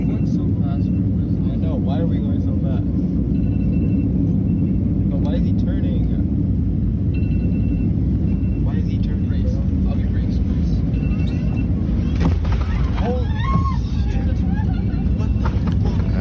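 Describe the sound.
A loud, steady low roar of jet engines inside an airliner passenger cabin as it comes in to land in rain and a little turbulence, with faint muffled voices and a brief clatter near the end.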